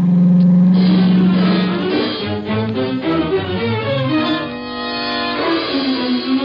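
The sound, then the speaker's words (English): A car engine hums steadily, its pitch rising and falling as the vehicle drives along at night, then easing down as it pulls up and settles behind a farmhouse. No one speaks. “We left my car around in back of the house and went up on the porch.”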